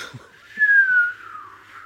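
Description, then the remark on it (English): A slide whistle plays one sustained, fairly loud tone that swells and then glides slowly downward in pitch, heard alone with no talking. “Don't get me wrong, there are things which I find really personally irksome, like the slide whistling man with the golden gun.”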